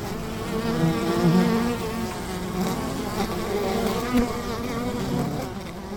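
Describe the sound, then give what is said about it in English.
Bees and wasps buzz steadily for the whole stretch, a dense, droning hum with wavering pitch as several insects seem to circle. No voices are heard. “The winter strategies of just a few of those yellow-striped insects are the topic of today's episode, bees and wasps.”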